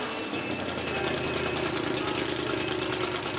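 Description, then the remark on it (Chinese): A classic race car engine runs at a steady idle, loud, with a continuous throaty rumble and a faint higher whine throughout, with no voices. It is a dedicated race car, not street-driven, with no air conditioning, power steering or power windows, able to reach 160 km/h in 8.5 seconds. “这辆车没有空调，没有动力转向，没有电动车窗。这辆车的使命就是开到赛车场上，以最快的速度飞速前进。”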